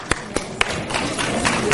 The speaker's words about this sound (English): There are 10 marriages in this age group every year for Samchenu. So let's offer a clap of applause for this great organization.